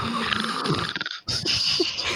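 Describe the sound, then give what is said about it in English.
A voice imitates a little snore: two raspy, breathy snorts split by a short pause, with no talking around them. “We're going to do a … fall asleep and just hear this like little like”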